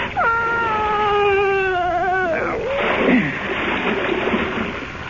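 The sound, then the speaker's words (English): A woman's long, wavering moan fills the first two seconds, then cuts off into a heavy splash as two bodies are pushed into dark water, followed by a few seconds of churning, sloshing water, fairly loud. “I closed my ears to her moans, and I pushed them both into the dark water.”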